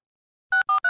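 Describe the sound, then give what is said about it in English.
A cell phone number being dialed in a conference room: three short, evenly spaced keypad beeps in quick succession after a moment of silence, clear, with no voices. “He dials a number and makes a call.”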